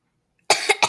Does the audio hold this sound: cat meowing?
no